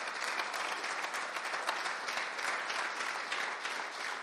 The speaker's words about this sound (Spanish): ¿Quiere darle un aplauso a nuestro Señor? ¡Fuerte!